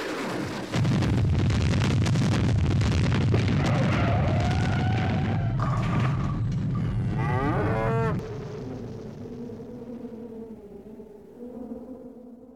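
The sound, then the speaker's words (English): A loud, roaring explosion from a superhero colliding with a comet bursts in and rumbles for several seconds. It then gives way to low, drawn-out lowing tones that trail off quietly. “What's that streaking toward the comet? Hooray! It's Super Pal! Oh no! No, they're gonna collide!”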